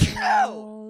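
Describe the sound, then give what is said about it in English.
A single sneeze aimed slightly toward the microphone: a sharp, noisy burst that turns into a voiced, groaning tail, held steady and fading out within a second. No one speaks. “I snooze slightly in the direction of the microphone.”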